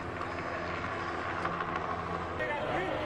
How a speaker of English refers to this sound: Helicopters showed up flying up overhead.